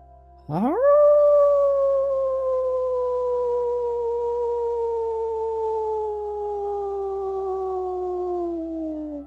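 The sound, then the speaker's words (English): A person howls like a wolf in one long, loud cry that swoops up sharply, then slowly sinks in pitch over about eight seconds, with no other sounds. “Howl now in this moment.”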